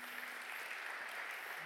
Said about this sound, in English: Can we just have a round of applause for my glamorous assistant?